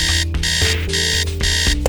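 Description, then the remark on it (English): An alarm clock rings loudly in repeated bursts, three bright electronic chiming pulses separated by short gaps, steady with no one speaking. “My alarm goes off.”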